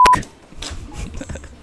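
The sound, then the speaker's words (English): A short, loud, steady censor bleep sounds at the very start, then gives way to quieter, murmured speech from people talking. “We're gonna have a lot more bleeps than last episode, aren't we?”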